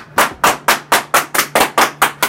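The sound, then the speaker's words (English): A steady run of about nine sharp hand claps at an even, brisk rhythm, each a crisp, bright smack that fades quickly, with no talking over them. “Your clap is weak”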